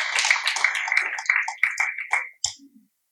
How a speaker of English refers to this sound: In case you're wondering, it's okay to give God a hand clap of praise about being his righteousness.